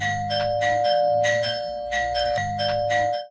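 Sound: doorbell ringing repeatedly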